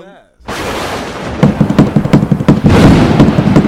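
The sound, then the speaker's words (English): A brief voice, then loud, rapid pounding on a table: a steady run of sharp thumps, several per second, over a continuous wash of background noise that swells toward the end. “You're gonna break the table.”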